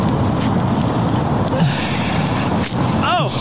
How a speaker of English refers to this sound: He bit some off just so he could get it started. He's trying to rip open the fox's innards.